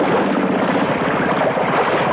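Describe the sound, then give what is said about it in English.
A motorboat engine idles steadily with a low, pulsing chug, mixed with wind and water noise. It stays loud and even throughout, with no voices. “The motor's died, and the boat's drifting.”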